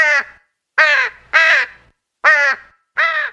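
Ravens on the roof of a van caw five times in loud, harsh, hoarse calls, each about half a second long, arriving in an uneven rhythm with brief silences between them and no voices.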